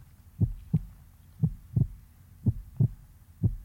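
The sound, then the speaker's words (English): A steady heartbeat thumps in low, muffled lub-dub pairs, roughly one beat per second, four beats in all, prominent with no voices over it. “All starts with your heartbeat.”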